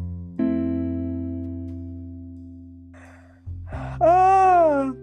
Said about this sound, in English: Oh my gosh, you really going to yawn on the pod, really? I can't hold it in. It's a involuntarily bodily function.